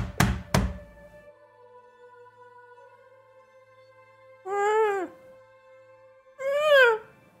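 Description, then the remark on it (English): Two heavy, hollow thuds of slamming from inside a closed, buried casket, just cleared of dirt on top, land in quick succession at the start, followed by a lingering resonant hum, then two short wavering vocal cries a couple of seconds apart. “And now there is slamming coming from the inside.”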